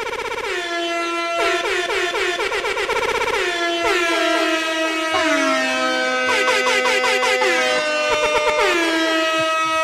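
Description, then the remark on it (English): Loud, layered air horn blasts fire off in rapid overlapping bursts, some sliding in pitch, filling the whole stretch with a chaotic, continuous blaring without any talking. “Hey, I'm going all the way to my air horn page.”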